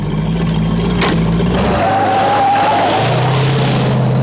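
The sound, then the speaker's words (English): A 1971 Plymouth Barracuda (Hemi-Cuda) muscle car engine in a Don Coscarelli film rumbles loudly, its deep growl shifting pitch as it revs, while a high tire squeal skids across the middle of the sound before the engine settles again. “And he cast one of the real stars of the film, that 71 Barracuda.”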